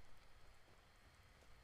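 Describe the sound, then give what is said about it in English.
Light drizzling rain falls at night in a steady, soft hiss with faint scattered patter, quiet and even throughout, with no voices. “It's nighttime. It's a little rainy. It's a drizzle in the air.”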